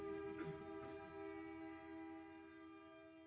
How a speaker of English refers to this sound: We'll have a Selah moment as the train passes by.